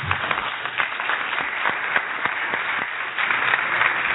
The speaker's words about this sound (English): And while that's happening, I wonder if we can stop and give a round of applause for all the young people.